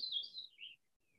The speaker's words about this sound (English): See, he seconds what I just said. The bird. The bird, yeah. I heard it. Yeah. And you heard it. People heard it on the podcast.